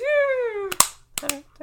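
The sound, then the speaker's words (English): A long, falling vocal tone gives way to a handful of sharp hand claps or thigh slaps in an uneven gallop, mimicking horse hooves, with brief vocal sounds between hits. “1-800, are you clapping?”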